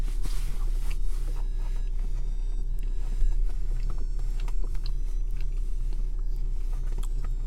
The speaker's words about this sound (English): Okay, hang on. Let me finish chewing.